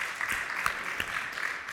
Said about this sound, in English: I believe another round of applause is deserved by everybody who participated